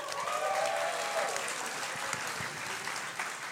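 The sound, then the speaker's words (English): Live audience applause fills the whole stretch, a dense steady patter of clapping at an even loudness, with a few brief vocal whoops and cheers rising over it early on. “All right, let's give it up for that.”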